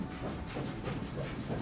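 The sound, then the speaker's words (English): A train rolls through a tunnel with a steady rumbling roar and a bright hiss over it, continuous and even throughout, with no voices. “We're headed for the rainbow tunnel that will take us far, far away.”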